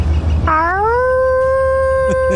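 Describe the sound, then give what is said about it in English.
A woman in a TikTok video lets out a single sustained wolf-like howl that rises in pitch and then holds steady, loud, with low rumbling background noise and no talking. “She does do a pretty good howl.”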